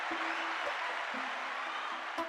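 A crowd claps steadily, a dense wash of many hands applauding at moderate volume with no gaps, sustained throughout the short stretch.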